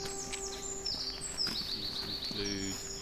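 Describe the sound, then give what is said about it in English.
Several birds, among them carrion crow, jay, magpie, blackbird, song thrush, robin, dunnock, blue tit, great tit and long-tailed tit, sing and chirp in a park with bright, high whistles and rising and falling calls overlapping throughout, over a low steady background hum and a brief murmur of voices. “Carrying crow, jay, magpie, blackbird, song thrush, robin, dunnock, blue tit, great tit, long tail tit.”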